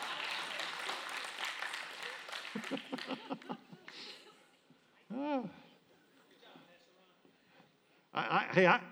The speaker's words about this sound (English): Yeah, go ahead. You two clap again. Maybe everybody else will catch.